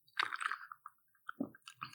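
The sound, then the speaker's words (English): A man takes a big gulp of an iced drink, with wet mouth sounds and several quick slurping, crunchy bursts over two seconds, fairly loud and with no talking. “He took a big gulp.”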